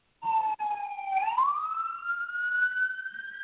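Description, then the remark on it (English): A loud emergency vehicle siren wails steadily, its tone dipping then sweeping upward as it passes by, with no talking over it. “Waiting for the siren sound.”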